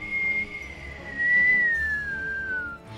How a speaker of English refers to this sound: you become very aware of this very, very faint, high-pitched whistling sound.